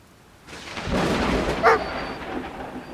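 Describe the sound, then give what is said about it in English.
A low, rolling rumble of thunder swells in after a quiet start and sustains over steady rain noise, with a single short dog bark cutting through midway. “I got a feeling that he'd always hated the sound of thunder.”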